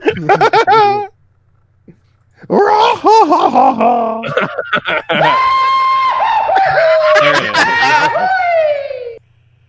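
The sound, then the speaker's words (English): A voice imitates a cartoonish falling yell: a few short whooping bursts, then a long, loud, wavering holler that slowly slides downward in pitch before cutting off. “Goofy. Wilhelm scream.”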